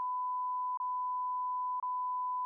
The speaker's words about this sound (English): That's getting bleeped out. Is it? Yeah. Why? I have family listening.